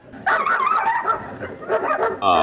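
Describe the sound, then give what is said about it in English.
A pack of wild dogs in a building barks and yips in a loud, overlapping clamor, the noisy chorus running continuously for a couple of seconds with a few whimpering, higher-pitched cries mixed in. “Josh Trank and his pack of wild dogs are in the building.”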